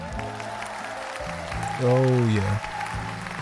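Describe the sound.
A steady wash of clapping applause, played as a sound effect, fills the whole clip, with a man briefly speaking over it partway through.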